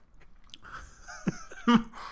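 chewing food

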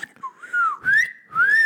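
person whistling

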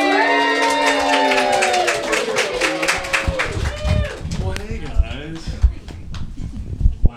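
audience clapping and cheering

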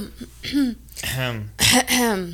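throat clearing

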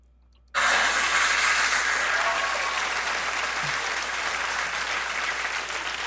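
applause

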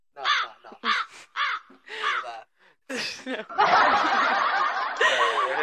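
crows cawing sound effect

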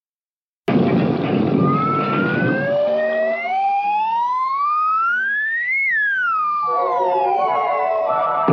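slide whistle

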